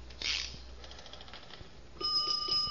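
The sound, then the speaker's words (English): A fire alarm box bell starts ringing after a short mechanical clunk as the box's guard is lifted and its handle pulled to send a fire alarm, a loud, steady metallic clang with rapid repeating strikes that continues to the end. “Yeah, now a bell goes off in the box, but don't let it scare you.”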